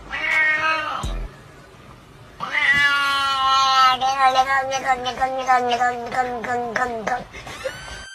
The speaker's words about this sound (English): I mean, then I saw another clip where this guy said his cat was saying some crazy shit.